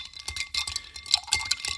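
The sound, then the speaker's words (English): Ice rattling and clinking in a mixing glass as it is stirred briskly for a cocktail made with absinthe and grenadine, a quick rhythmic run of bright, glassy taps and swishes with no voices. “Throw the ice in to our mixing glass and give this guy a good, vigorous stir.”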